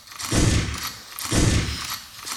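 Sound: gunshots sound effect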